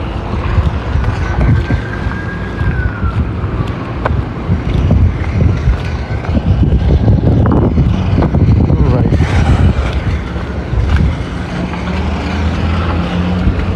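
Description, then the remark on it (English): Loud, steady wind roars and buffets the microphone in low, rumbling gusts on a wet, rainy day of about 3 or 4 degrees, with a vehicle engine droning underneath and a brief rising tone early on. “It's windy, as you can hear.”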